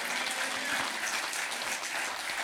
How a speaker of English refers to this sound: If you are in agreement, clap your hands and celebrate the Lord.